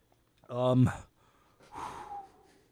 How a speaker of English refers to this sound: I apologize, audience, if I'm breathing into the mic real hard and drooling.